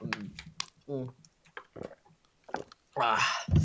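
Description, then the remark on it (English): Loud, wet gulping of gasoline in a quick irregular series of swallows, mixed with throaty vocal noises and ending in a heavy, breathy gasp. “That was like an intense like water drinking session I just heard.”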